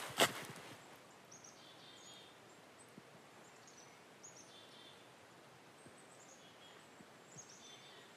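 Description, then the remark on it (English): In a quiet forest, a couple of faint birds trade short high chirps and whistles every second or so against near silence, with a little wind in the trees and a soft rustle or click at the very start. “I don't know if you can hear it, but I hear a couple birds talking to each other.”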